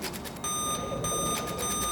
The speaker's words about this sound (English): Incessant beeping. Carrying on for one too many cycles. And was on Bob's side of the control panel.